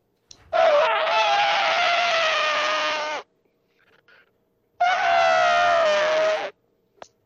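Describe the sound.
A person imitates an elephant trumpeting, putting an arm out like a trunk, with two loud, sustained, brassy blasts, the first about three seconds long and the second shorter, separated by a brief pause with no other talking.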